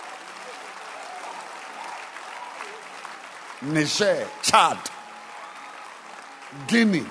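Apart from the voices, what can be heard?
audience clapping hands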